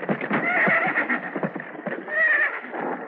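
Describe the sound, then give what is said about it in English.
A horse neighs in loud, wavering whinnies with high, sliding tones, accompanied by a rapid clatter of hooves that keeps up a busy, uneven rhythm throughout. “Keep after those horses.”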